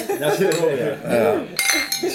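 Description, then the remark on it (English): Beer glasses of Castle beer clink together in a toast, a couple of bright knocks and chimes around the middle and end, with cheerful voices talking over them throughout. “To a castle and a beer.”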